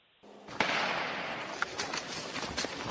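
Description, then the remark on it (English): Several sharp gunshot cracks ring out at irregular intervals over a constant rushing, crowded background, the first one loudest and the later ones quicker and a bit fainter, heard by a news reporter in the field as soldiers yell at people to get out of the area. “We just heard a gunshot, and they're yelling at people to get out of the area.”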